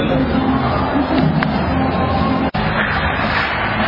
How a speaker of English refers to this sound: Well, the audience are clapping, waiting for the opening ceremony to start.